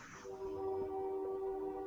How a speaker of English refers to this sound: Train. There's the train. It's coming every episode, apparently.